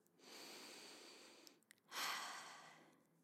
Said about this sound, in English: I stop and feel my breathing. Peaceful and calm, I'm ready for yoga.